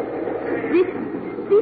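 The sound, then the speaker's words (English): A train rolls into a station in Los Angeles with a steady, muffled rumble, broken by two short rising squeals of brakes, heard from inside the carriage. “We're coming into the station.”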